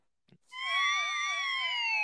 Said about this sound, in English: Wait, should I play the siren thing again?